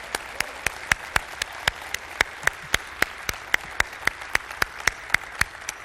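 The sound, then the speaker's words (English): Applause from an audience at a morning church service, approving a motion to receive missionaries into the mission family: steady, rhythmic clapping with evenly spaced sharp claps, moderately loud and continuing throughout, with no talking over it. “If you're in agreement on that, would you let it be known by applause and saying amen, please, this morning?”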